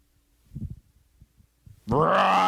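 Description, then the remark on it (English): A man's voice imitates the Hulk's roar: a few low, breathy grunts build up, then burst into a loud, sustained, rasping bellow that holds strong to the end. “Roar! That was my Hulk”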